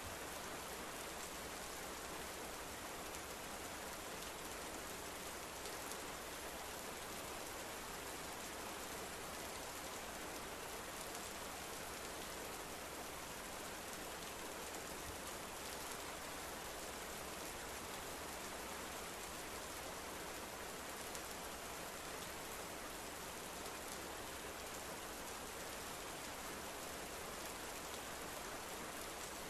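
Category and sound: nature, steady rainfall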